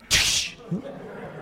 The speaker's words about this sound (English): What in the world did you do that for? Well, you told me I could slap you in the back of the head if I ever heard you complain.